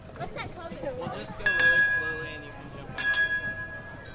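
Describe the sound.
A surrey bike bell rings twice, about a second and a half apart, each ring bright and lingering with a metallic shimmer, over faint murmuring voices and outdoor background noise.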